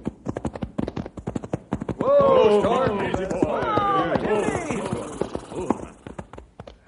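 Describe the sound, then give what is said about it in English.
Horse hooves clip-clop in a quick, steady, distinct rhythm as riders saddle up and set off for a canyon, while a long wavering tonal sound swells over the middle stretch before the hoofbeats carry on alone. “Fellas, let's saddle up and go out to the canyon and do our own sleuthing.”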